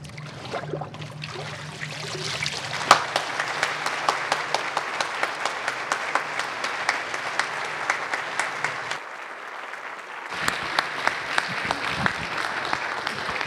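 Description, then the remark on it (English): A church audience claps steadily for several seconds for people just baptized as they get out, a dense wash of hands with sharper individual claps standing out, dipping briefly before swelling again toward the end. “And we're going to continue that this morning, so yeah, let's clap for them one more time as they're getting out.”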